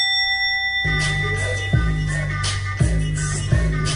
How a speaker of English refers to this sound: Ring the bell for grown-ups.